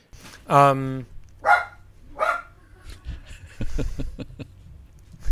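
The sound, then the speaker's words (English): A dog barks three times, a deep harmonic woof followed by two shorter barks, then people begin talking over low background noise. “good heavens, dog cast”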